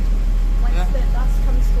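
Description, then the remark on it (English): A bus engine drones steadily with a deep, constant rumble while riding, loud throughout, with faint muffled voices murmuring underneath. “Once the bus comes to a halt, we will interview you again”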